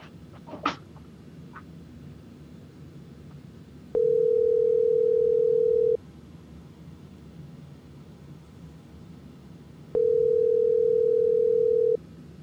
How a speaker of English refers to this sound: Nope, he didn't answer the phone, so we just going to keep on rolling. And I'm leaving that call in, too. There you go. Yeah, I guess his phone died.